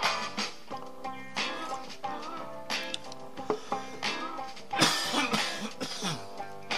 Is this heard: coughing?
yes